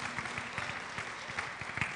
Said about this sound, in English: We'll give God one more praise, hand clap of praise. I just love hearing that.